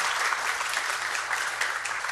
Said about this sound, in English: We just would like to thank you, everyone here in the panel. I think everyone should clap.